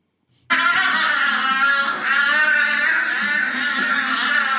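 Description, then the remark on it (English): A loud, high-pitched moaning wail begins abruptly and carries on without pause, wavering in pitch with a strained, exaggerated quality, like sexual moaning played from a video; no talking over it. “I would be a little alarmed if that was the orgasm I was hearing and looking at.”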